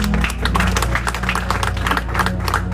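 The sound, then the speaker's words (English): A church audience claps steadily in a dense, continuous patter of many hands, with a low sustained hum underneath throughout. “Clap for them. They are doing well.”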